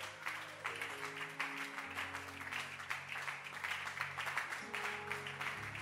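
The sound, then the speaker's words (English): An audience at a Pentecostal church service claps steadily and loudly for several seconds, a dense wash of many hands, with sustained organ-like chords droning underneath throughout. “Oh, let your hand clap be resounding.”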